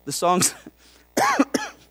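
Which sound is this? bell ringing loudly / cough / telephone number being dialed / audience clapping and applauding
cough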